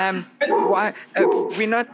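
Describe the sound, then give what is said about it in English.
A player imitates a dog barking with three drawn-out, voiced woofs in quick succession, loud, with no other sounds around them. “Bob's dog agreed.”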